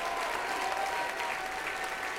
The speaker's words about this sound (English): Everybody clap your hands and give God the glory.